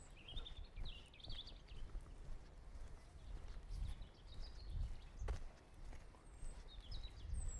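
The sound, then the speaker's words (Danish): Rhythmic footfalls of a woman jogging pass by, steady thuds on the ground, while birds chirp and twitter in the background of an outdoor setting. “Du hørte også, at der kom en jogger forbi, som jeg hilste på.”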